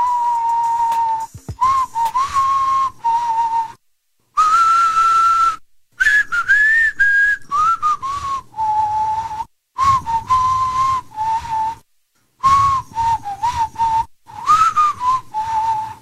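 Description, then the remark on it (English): A person whistles a melody, clear bright tones rising and dipping in short phrases with brief pauses between them, and no talking. “Have you ever heard of the whistle walk or the whistling walk? First of all, can you even whistle?”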